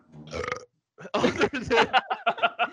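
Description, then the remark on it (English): A short burp, followed after a brief pause by a longer, loud, gurgling belch that breaks into a rapid series of croaky pulses. “You should have before that burp, you should definitely said OPE.”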